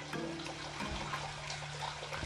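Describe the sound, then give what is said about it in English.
Water trickles steadily in a turtle tank where a turtle rests, a continuous splashing babble over a faint low mechanical hum, with no voices. “And I'm surrounded by like my husband and my son who are sleeping and my turtle who is resting in this water.”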